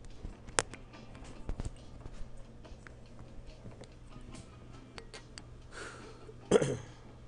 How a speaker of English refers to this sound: I'm putting it on this mic right now, and I'm taking this dab. I'm going in. Cheers, you stoners.